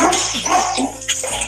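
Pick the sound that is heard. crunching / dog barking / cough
dog barking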